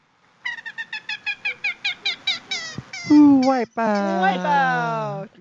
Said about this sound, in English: And they call this the wipeout call, because it kind of sounds like that. Okay, so here's the common gallinule.